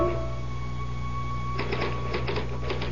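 Typewriter keys clatter in a quick, uneven run of sharp mechanical strikes as someone types through the night, starting about halfway through after a steady low electrical hum that continues underneath.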